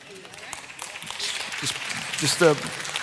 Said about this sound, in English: But after that, men, don't clap too loud because your turn is when I come back.